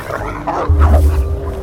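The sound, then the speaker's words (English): A wolf barks and yelps in a few quick, sharp bursts, loud, over a steady low rumble in the background. “Adeline lowered her head and lashed the wolf with her spiraling horns before leaping backward in retreat.”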